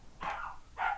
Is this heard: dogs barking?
yes